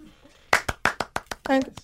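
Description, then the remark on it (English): Short burst of loud, sharp hand claps from an audience after a song, about seven uneven smacks after a quiet start, with a brief voiced whoop or cheer mixed in near the end. “Yeah, take that clap break.”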